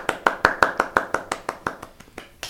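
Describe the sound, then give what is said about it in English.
A steady run of about fourteen sharp claps in an even, fairly quick rhythm, clear and gradually softening toward the end with no voices. “Those are his wings flapping together.”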